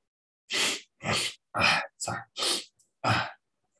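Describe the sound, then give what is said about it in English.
A rapid run of six sneezes, each a short, breathy, forceful burst at an even rhythm, fairly loud, with no talking around them. “Damn you, sneeze.”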